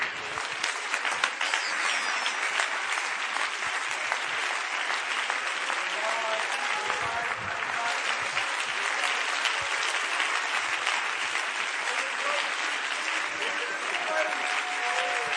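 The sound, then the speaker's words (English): A church audience, standing at the preacher's call, claps their hands in sustained, dense applause, a steady wash of many hands filling the room with faint voices mixed in underneath. “Everybody stand, clap your hands.”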